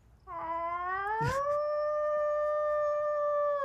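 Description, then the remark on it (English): A woman imitates a wolf howl, one long sustained note that rises in pitch and then holds steady, loud, with no other voices or sounds around it. “Of course I can howl.”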